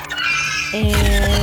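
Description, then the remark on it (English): An eyelash bat hisses and clicks at a puppy in a loud, raspy burst with a strained, whining tone running underneath, rising in intensity about halfway through. No one speaks. “Okay, so this eyelash bat sees this puppy, you know, dragged down fire, and it looks at it and starts hissing and clicking.”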